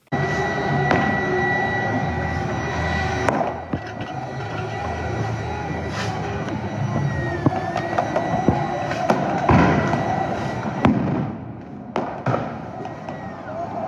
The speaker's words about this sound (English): Feds shot more and more munitions into the crowd, and protesters tossed back canisters of tear gas and fireworks into the federal lines.